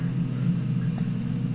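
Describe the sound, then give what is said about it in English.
A garbage truck's engine rumbles steadily, a deep continuous drone with a low hum that holds even and loud throughout, with no voices. “Often you see a bin lorry in a movie, though.”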